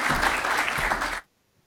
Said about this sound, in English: We'll give you a warm round of applause here from London to Spain. Thank you.